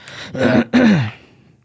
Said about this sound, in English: Man, I got a cough going on. I think maybe I have some of that coronavirus.